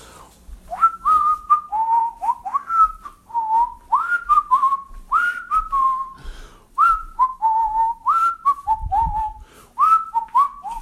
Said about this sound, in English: Your whistling is most annoying.